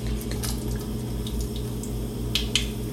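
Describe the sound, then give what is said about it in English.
Batter is poured onto a hot cooking surface, making soft wet drips and a couple of sharper little splats, over a steady low humming drone with no talking. “I'm currently pouring the batter on the thing.”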